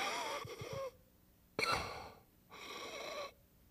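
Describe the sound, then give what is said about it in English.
A voice imitates the labored, wheezing breathing of a man in a hospital bed: three rasping breaths, a long strained inhale, a short sharp gasp, then another drawn-out wheeze, with pauses between. Fairly quiet, no words spoken. “That was the way he was breathing.”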